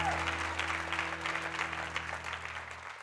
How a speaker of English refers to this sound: Can we give the keyboardist a big hand clap for his ministry? Thank you so much.